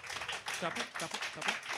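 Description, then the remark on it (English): Light, scattered applause from a small audience voting by applause, a thin patter of claps with no strong peaks, mixed with murmuring voices. “Tepid, I would say the response was.”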